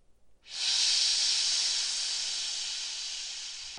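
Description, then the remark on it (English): A giant snake's deep bass hiss starts abruptly and holds as one long, loud, airy rush for about three seconds, fading slightly toward the end, with no voices or other sounds around it. “But then you hear a hiss. A real deep bass.”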